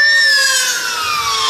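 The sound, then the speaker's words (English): Loud fire truck sirens blare as several fire trucks speed past outdoors on a windy day, their piercing, layered tones sliding slightly downward in pitch over a steady roar, with no voices heard. “There are literally fire trucks flying past me.”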